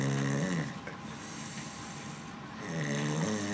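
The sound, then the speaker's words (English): A sleeping person snores loudly, with two long, rumbling, buzzy inhalations separated by a quieter pause. No one speaks. “Dude, I snore no matter what.”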